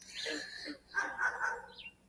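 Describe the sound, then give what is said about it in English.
A dog whines in a short run of high, thin whimpers that rise and fall for about two seconds, with no talking over it. “The dog found me.”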